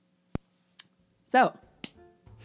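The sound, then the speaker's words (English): One soft, feeble hand clap, a short dull smack, followed by a brief vocal sound and a couple of light clicks against near silence. “Such a weak little clap.”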